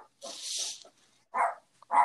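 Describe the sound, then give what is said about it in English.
Two short, sharp dog barks sound about half a second apart, after a brief burst of hissing, scuffling noise at the start. “Like, what is going on with my dogs?”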